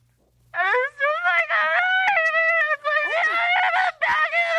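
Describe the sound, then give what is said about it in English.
A man with his head down wails and screams into the air at the top of his voice, shouting "oh my God", long strained cries broken only by a few quick gasps, loud for several seconds. “He starts just screaming into the air.”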